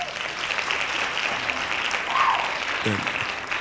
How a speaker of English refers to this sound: Okay, hand claps.